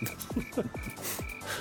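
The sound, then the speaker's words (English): A cricket sound effect: steady cricket chirps pulse in regular bursts over a quiet night-time ambience, with frogs croaking in short descending calls throughout. No one speaks. “Definitely putting a cricket sound effect in there.”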